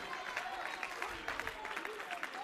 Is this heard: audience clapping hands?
yes